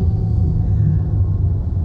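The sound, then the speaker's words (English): A fire truck rumbles past, its deep engine drone steady and loud for a couple of seconds with no siren and no voices. “Hi, fire truck.”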